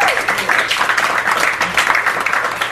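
A crowd breaks into steady, loud applause, many hands clapping in a dense, continuous patter with no pauses over a few seconds.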